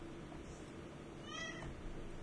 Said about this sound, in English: Baby. A very faint baby. Actually, it might not be that baby. It's kind of loud. That's definitely a cat, though.